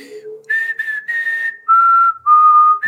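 Someone whistles a slow, sustained movie theme melody, a few long clear notes gliding and stepping downward in a high pitch, fairly loud with no talking over it.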